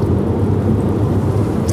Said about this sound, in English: Oh, just a semi.